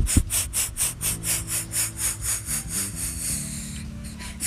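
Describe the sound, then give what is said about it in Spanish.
A fast, steady series of sharp, forceful breaths in Kapalabhati-style yoga breathing, about 18 exhalations, pushed out in an even rhythm, roughly four per second, with a soft low tone sustained underneath. “Lo puedes hacer entrecortado también, como Kapalabhati. Y exhalas.”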